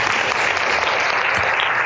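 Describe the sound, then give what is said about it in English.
A church audience claps for the worship team in a dense, sustained burst of applause, loud and even throughout with no voices on top. “Church, would you just give the worship team a round of applause?”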